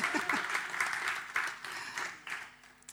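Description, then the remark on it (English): A crowd applauds steadily for a few seconds, cheering a speaker's nearly 37 years of marriage, dense clapping with a few whoops and cheers rising above it, fairly loud throughout and tapering slightly at the end. “I've been married for, it's going to be 37 years in October, so you can all cheer, isn't that?”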